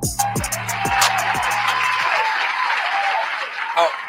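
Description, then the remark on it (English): A crowd at the start of a live show applauds steadily, a dense wash of clapping that holds at an even loudness for about four seconds, while a low tonal musical sting fades out in the first half. “Okay, hold the applause.”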